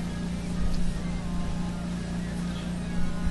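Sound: air conditioner running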